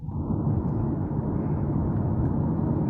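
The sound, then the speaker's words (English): A steady, loud roar of jet engine noise at JFK airport in New York fills the whole stretch, a dense low rumble that holds constant without pauses, with no voices over it. “you sound like you're about to take off in a jet.”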